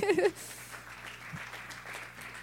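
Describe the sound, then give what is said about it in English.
A church audience claps steadily for a woman who has come up to the front, in a soft, continuous patter after a brief high vocal whoop at the very start. A low, constant hum runs underneath. “Yes, give her a clap.”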